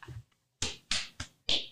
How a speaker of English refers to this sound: Ladies and gentlemen, that was her slapping her knee. It's funny. Trying to make it a literal knee slapper when. only she's laughing.